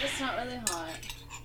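Metal clinks against a glass as a hot toddy with Havana Club rum is stirred and mixed, with a sharp chime partway through and softer ringing, tinkly clatter around it.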